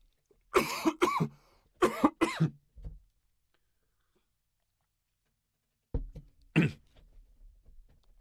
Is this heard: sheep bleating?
no